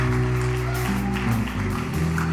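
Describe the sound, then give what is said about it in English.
A worship crowd claps together for God, steadily and loudly, over sustained music with a deep bass line and held chords, the clapping forming a dense wash of hand claps. “Clap together for God.”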